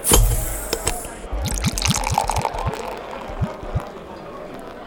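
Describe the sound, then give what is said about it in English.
Water and a pint being poured into glasses, with a quick run of rhythmic glugs that rise in pitch as it fills, over some light background clatter. “I'm going to get you some water. I'm going to get a pint, all right?”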